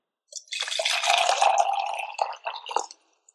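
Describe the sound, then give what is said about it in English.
Water is poured steadily for about two and a half seconds, a bright splashing stream that breaks into a few gurgling spurts before stopping; fairly loud, with no talking. “But he's going to play two different ones, and then you got to say, okay, is that cold water or is that hot water? Just by listening to it, okay?”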